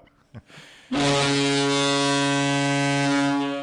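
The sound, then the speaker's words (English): A meeting reminder alert for a monthly manager meeting sounds as a single loud, sustained horn-like tone, rich in harmonics, holding steady for nearly three seconds after a brief quiet moment, then fading slightly at the end. “Whoa, what's that? Wow, got a little sound effect there. Meeting reminder.”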